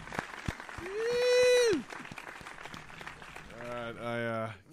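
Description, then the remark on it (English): A group claps steadily to welcome a guest in, a dense patter of sharp hand claps, with a long whooping cheer rising over it early on and another sustained vocal cheer near the end. “Oh, let's just clap him in.”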